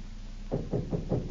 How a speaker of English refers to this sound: They only knocked twice. Yeah. They didn't give the right high sign.